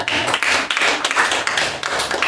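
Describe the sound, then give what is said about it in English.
A crowd bursts into steady applause, dense overlapping claps filling the space at a fairly loud, even level for a couple of seconds with no voices on top. “Guys, can we have a round of applause for mimosas so I can take a sip?”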